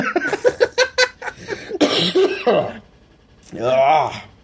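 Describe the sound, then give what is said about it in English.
A deep, chesty cough from a chest cold erupts after a run of quick laughter-like bursts, followed by a brief pause and another rough, wheezy hack. “That chest cold”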